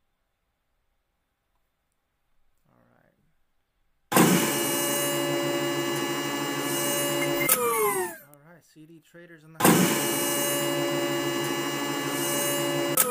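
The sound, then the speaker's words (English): A big office door grinds open with a loud, steady mechanical whir that starts abruptly, breaks off for a moment while someone speaks, then resumes just as loud. “that noise is the door opening. We've got a big door in our office that opens up, and we close it, obviously, to prevent anyone from coming in and disrupting the podcast.”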